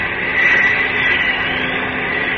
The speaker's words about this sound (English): Yes, that does sound like a plane. Above me and coming this way. Up! It's a plane, all right. I'm sure of it. I can't see it yet, though.